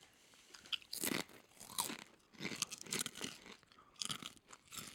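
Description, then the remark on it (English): Loud, crisp crunching of dill pickle potato chips being chewed, in several sharp bursts spaced about a second apart, with softer chewing between them and no talking. “So honestly, what's great about this chip...”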